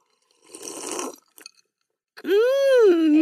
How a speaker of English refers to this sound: All right, I'm going to take a quick sip.